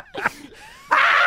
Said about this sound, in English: Cock a noodle do. What does the rooster say? You know what? Cock a doodle. I love that sound. I love it.